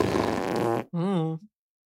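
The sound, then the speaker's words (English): A person blows a wet, sputtering fart noise with their mouth, then follows it with a short, buzzy, rising raspberry tone. Both sounds are loud, with no talking. “Hot gator farts.”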